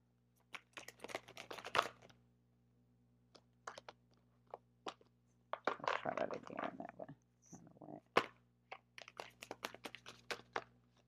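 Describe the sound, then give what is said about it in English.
Crisp bursts of card shuffling, quick papery riffles and flutters in two main clusters, with scattered taps and snaps as the deck is squared and cut. “I'm going to shuffle one more time, then I'm going to cut them.”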